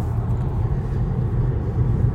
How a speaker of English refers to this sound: I'm in the car with James Scowcroft, who's been kind enough to give me a lift to the game.